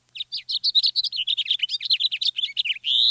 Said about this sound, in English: House finches sing sweetly, but often have a sharp, buzzy note near the end. Listen.